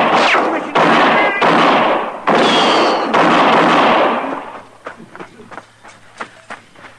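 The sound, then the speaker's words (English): Gunshots in a shootout as Marshal Dillon's men fire on covered outlaws: a rapid volley of loud, booming gunshots rings out, several blasts running together, then trails off into scattered sharper, quieter shots and clicks. “Shoot him.”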